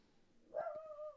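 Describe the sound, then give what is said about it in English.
A dog gives a single drawn-out, yelping bark that trails off, heard faintly with no talking around it. “Sorry, it's time for the dogs to yell in the middle of my show.”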